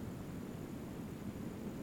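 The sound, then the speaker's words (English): A steady, even hiss, voiced in imitation of background noise, holds at a low, constant level for about two seconds with no talking. “You know what background noise is? It's the hiss.”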